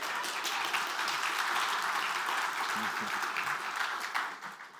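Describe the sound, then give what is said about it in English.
Steady applause from a crowd for a 12-year-old girl who has just demonstrated a back-handed slap on the speaker's cheek, dense and sustained, with faint voices mixed underneath before it starts to thin out at the very end. “Y'all give her a round of applause.”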